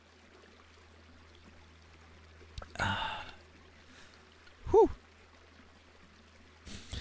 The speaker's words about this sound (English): I'm about to take a sip of a bottle full of covalent bonds. That is water.